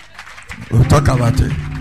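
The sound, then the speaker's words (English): A church audience breaks into loud, steady hand clapping for a bishop after a quiet moment, the dense claps continuing with voices murmuring and calling underneath. “Clap your hands for him. Clap your hands.”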